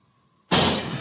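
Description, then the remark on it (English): A Mountain Dew soda can drops to the floor in a hallway with a sudden loud metallic clatter that rings on briefly, breaking an otherwise quiet moment that held only a faint steady hum. “I dropped my Mountain Dew can.”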